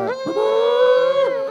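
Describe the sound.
A voice imitates a blown seashell horn, as Ron Burgundy does, with one sustained, steady tone rich in overtones, swelling in and holding for over a second before sliding off at the end.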